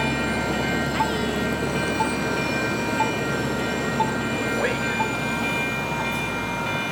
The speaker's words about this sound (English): Wait. Oh, here goes the train. This is the Pacific Coastliner.